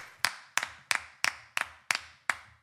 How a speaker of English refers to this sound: Insert applause here.